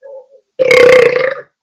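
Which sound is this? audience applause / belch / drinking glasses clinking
belch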